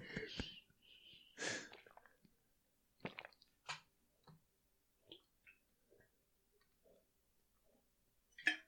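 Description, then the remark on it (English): Quiet gulping and swallowing sounds of a thirsty person taking a drink, with soft breaths and small wet clicks, spaced out irregularly, ending with a sharper burst. “I'm really thirsty. You can hear me swallowing.”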